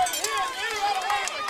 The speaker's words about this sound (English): You can hear the Bobcat fans screaming at the officials. Tell them that was a makeup call, and glad that they got it right this time.